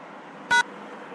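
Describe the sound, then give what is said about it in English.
A single short electronic beep, signalling yes, bright and tonal, rises sharply out of a steady low hiss and cuts off after about a tenth of a second. No one speaks. “Alright, one beep for yes, two beeps for no.”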